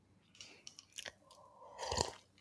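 Wet mouth sounds of someone sipping water: soft clicks and smacks build to a louder slurping gulp near the end, with no talking.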